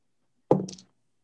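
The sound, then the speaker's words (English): Dice rolled for Rascal the raccoon's attempt to sneak past a fungus hit a hard surface with a solid knock, followed by a few quick, light clattering ticks as they settle. It's a single short burst with no talking. “wait, let me roll his dice.”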